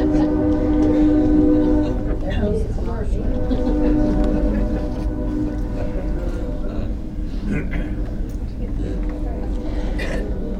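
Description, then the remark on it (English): A train rumbles past, a loud, continuous low roar with steady droning tones and rattling that holds throughout without fading. “Here we have the train rumbling. We will pause briefly.”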